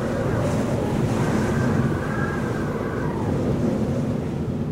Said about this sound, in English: The storm is raging. It's very windy and cold. Visibility is near zero. It's getting dark.